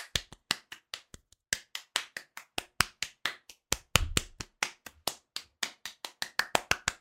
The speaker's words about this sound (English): Round of applause all around. Can you guys hear that in the mic different ways?